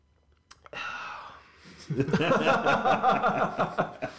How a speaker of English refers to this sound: It's very tart. It's not an IPA. It's not an ale. It's very tart. I want you to lean really close to the mic. Take a sip. Take a sip, and I need that sound.